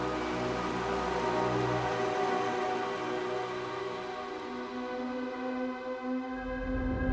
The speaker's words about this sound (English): If you were standing on its surface, the soundscape might be eerily familiar. you might hear the sound of flowing liquid methane. Not a waterfall, but a methanofall.